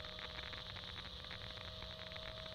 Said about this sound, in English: Nothing but static.